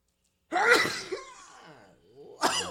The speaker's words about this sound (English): make you sneeze. That's the good stuff. Lord, forgive me for the Gorilla Glue.